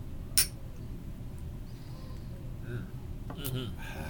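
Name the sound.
glasses clinking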